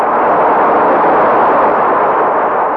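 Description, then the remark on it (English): A loud, steady roar of rushing water carrying a raft down into an abyss after an explosion, a dense, unbroken wash of sound that holds constant for the whole stretch, with no voices or distinct individual splashes. “I could hear nothing but the roaring of the waters.”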